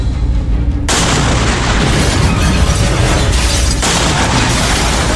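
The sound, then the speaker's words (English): The security doors of the cells holding Batwoman explode as a drone army enters the Belfry Tower: a loud explosion bursts out after a low rumbling lead-in, followed by sustained roaring, crackling blast noise that stays loud throughout, with a second surge partway through. “The security doors holding Batwoman explode as the drone army enters the Belfry Tower.”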